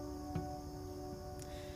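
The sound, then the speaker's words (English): Faint, steady cricket chirping drones on without pause in a quiet outdoor setting, with a couple of soft brief clicks and no voices. “I'm out here without the birds today. Just crickets.”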